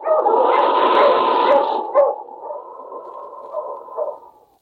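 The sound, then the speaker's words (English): A dog, King, Sergeant Preston's wonder dog in the Yukon, barks loudly in drawn-out, howling calls over a rushing, noisy background, then trails off into softer, lower whining barks. No one speaks. “Now back to the days of the gold rush when Sergeant Preston and his wonder dog King battled through storm and snow to preserve law and order as they met the challenge of the Yukon.”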